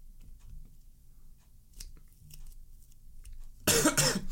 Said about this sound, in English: Stop coughing on the pod. I'm sorry. My God, put a cough counter. Don't put a cough counter. I'm going to get self-conscious.